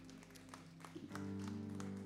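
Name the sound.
audience applause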